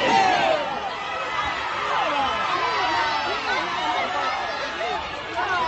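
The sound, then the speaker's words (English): Parents in the stands at a kids' football game groan and half-jeer as a much bigger kid stiff-arms a child and runs for the end zone: a steady murmur of many overlapping voices with scattered disgruntled shouts, no clear words, sustained at a moderate level throughout. “And the parents in the stands are actually all not quite booing, but they're almost just like, come on!”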